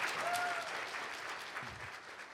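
An audience applauds steadily, a dense, continuous patter of many hands clapping at an even level, with a few faint whistles or cheers rising briefly near the start.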